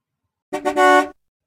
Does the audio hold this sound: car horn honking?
yes